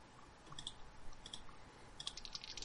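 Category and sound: percentile dice being rolled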